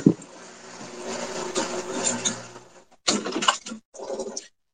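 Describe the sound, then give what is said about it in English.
A water pump running with a steady droning hum and rattling buzz as someone turns it off, then cutting out and restarting in a few short, choppy bursts before going silent. No one speaks. “Let me turn that water pump off real quick.”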